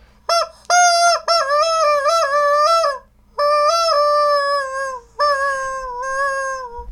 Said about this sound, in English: This is like a chicken unicorn. And a reindeer, and then the chicken's head is gone, but you can play it like a flute.